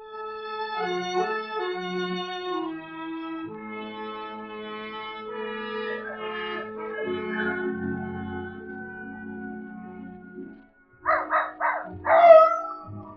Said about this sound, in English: Old Nugget the dog was carrying on a long-distance conversation with his country cousins, the coyotes up in the hills.